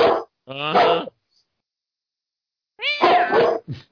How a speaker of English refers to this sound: Uh-huh. I thought the cat said, oh shit, for a minute there.